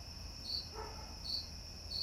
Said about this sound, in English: Now the cricket's chirping. It's closer.